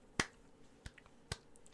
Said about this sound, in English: Sad clapping. Yeah, that's it.